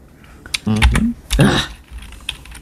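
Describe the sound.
Quick, uneven clicks of typing on a computer keyboard, fairly loud, while a voice briefly murmurs over the keystrokes partway through.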